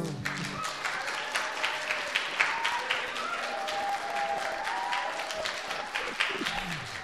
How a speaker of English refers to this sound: These guys, I pay them good money to cheer and clap. And last time they laughed all the right times I told them ahead of time to laugh at.